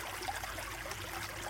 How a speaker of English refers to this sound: As you settle into the grotto's soothing atmosphere, you begin to hear the sound of rushing water.